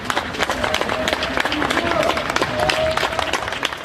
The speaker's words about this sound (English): Bystanders applaud as a special police team returns from a shootout with 29-year-old Sharif Chakat, a career criminal who had become radicalized in prison.